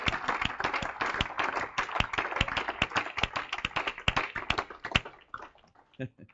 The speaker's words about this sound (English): One more time, let's clap our hands to the Lord together. Yeah. Hallelujah.